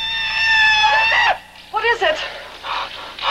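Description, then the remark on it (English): A loud, drawn-out yell, the stock movie scream known as the Tonga yell, holds steady for over a second before dropping off, followed by a few shorter vocal whoops. “Tonga yell. They use it in Kenya.”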